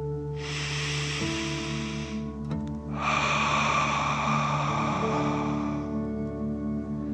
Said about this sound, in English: Continue to feel the warmth of the energy stream, and let's take three more deep dragon breaths. Remember to breathe in through your nose, filling up your chest and belly, and then out, pretending you're breathing fire. Deep breath in and out.